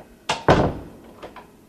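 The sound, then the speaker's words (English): A door to the rooftop of Road of Shalom Synagogue in Philadelphia swings shut with a quick scrape and then a heavy thud that rings out briefly, followed by two faint latch clicks. No one speaks. “I'm always nervous about letting the doors go.”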